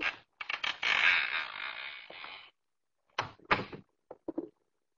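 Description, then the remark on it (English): A door is pushed open with a long, strained creak that trails off, followed by a few short wooden creaks and knocks, with no voices. “That door is already partially open.”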